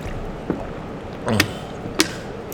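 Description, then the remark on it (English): A quick swig of water: a soft click, then a short wet gulp and another sharp tap, quiet and spaced out with no talking. “I'm going to take a swig of water first real quick, so okay.”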